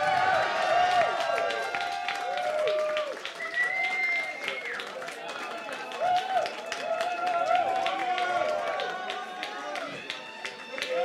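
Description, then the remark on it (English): A crowd applauds and cheers steadily for about eleven seconds to vote for a contestant by applause, dense rapid clapping mixed with high whoops and shouted voices rising and falling throughout. “So, what are we going by applause, yeah?”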